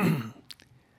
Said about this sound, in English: I'm not going to be able to contribute much. I'm coughing too much.